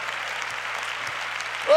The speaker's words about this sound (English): Everybody clap your hands to the King together today.